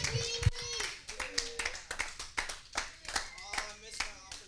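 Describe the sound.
A crowd claps steadily and enthusiastically for several seconds, with a dense patter of hands close by and a few voices calling out or cheering over the applause.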